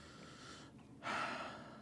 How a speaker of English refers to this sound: It's good that on an audio medium, yeah, you just sit there breathing into the mic.